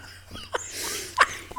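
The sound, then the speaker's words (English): A few short, sharp dog barks come in quick succession, two distinct yaps followed by a smaller one, with no voices in between. “Look at the dogs. They're like, why are they barking?”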